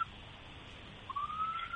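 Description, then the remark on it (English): A faint police car siren wail, a thin steady tone that slowly rises in pitch over the last second, heard alone over a soft background hiss. “No, yeah, so maybe that's the cops right there coming to get you.”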